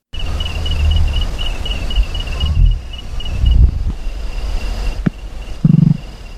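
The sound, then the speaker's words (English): Several short, low, muffled bursts of fluttering wing beats from a male white-winged nightjar flying up to attract a female break through a steady high chirring of crickets, with one sharp click between them and no voices. “Since most nightjars fly silently like owls, the beating of the male's wings is intended to attract a female. This is what it sounds like.”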